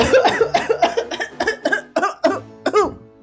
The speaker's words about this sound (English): You've a bad cough. Yes, yes. It's bad indeed. A bit of licorice may be what you need. No, I've a stubborn cold, it seems.